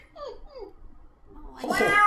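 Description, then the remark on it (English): A cat meows twice in quick, soft, falling calls, then lets out a louder, fuller meow that swells toward the end. “Meow! Uh-oh. There's a collision of the worlds over here.”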